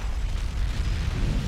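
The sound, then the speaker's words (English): A real car explosion, staged as a film stunt with dummies in the car, rumbles in a deep, continuous roar, loud, its heavy low boom rolling steadily without a break and with no voices present. “That is a killer explosion.”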